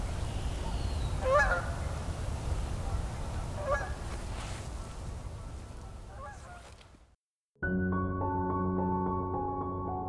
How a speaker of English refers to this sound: The Canada geese are stirred up quite a bit. Some Canada geese. Just a handful.